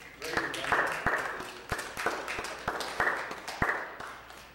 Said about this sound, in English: Let's give this ER doc a round of applause.